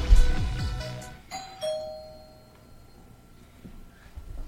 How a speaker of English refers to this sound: Who's ringing my doorbell at late at night?